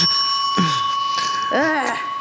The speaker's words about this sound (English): I'm like, hit the bell.